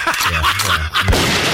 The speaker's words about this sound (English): Oh, the gunshots? Yeah, I'm shot.